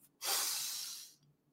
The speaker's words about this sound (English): So I call this the 478 breathing technique. 478. Take a deep breath in.